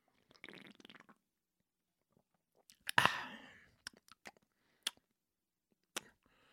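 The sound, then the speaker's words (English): A sip from a canned michelada (Chelada) beer drink: a brief airy slurp, then a louder wet gulp followed by several sharp swallowing clicks spaced over a few seconds, with no talking. “Let's taste this. Chelada.”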